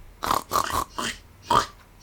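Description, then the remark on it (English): A person imitates a pig's snort with four or five short, rough, nasal bursts in a choppy rhythm, fairly loud, with brief pauses between them. “If you put letters behind a snort.”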